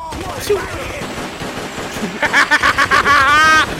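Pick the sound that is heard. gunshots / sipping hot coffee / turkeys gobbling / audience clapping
gunshots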